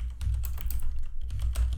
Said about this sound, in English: Here's me typing to Wood. Hey, mate, is New Zealand a small island nation?